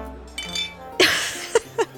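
Ale mugs clink together in a toast at a feast in Thor's hall, Skadi leaning across the table: one bright, ringing knock followed by two quicker, softer taps, with faint murmuring voices and a low background hum.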